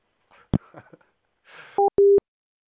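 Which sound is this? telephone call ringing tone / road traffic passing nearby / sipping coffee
telephone call ringing tone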